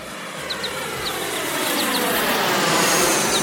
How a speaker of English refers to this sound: Wowee! There goes a big plane! I wonder where they're going.